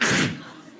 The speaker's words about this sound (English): People are disgusting now, too. They can't stop sneezing. Two is normal. I'll give you a third. Four, stay home. There's something wrong with you.